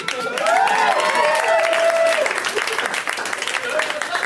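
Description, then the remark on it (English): An audience applauds itself steadily and loudly on June 28th, dense clapping filling the whole stretch, with whoops and a long whistle rising above it near the start. “Give yourselves a big round of applause.”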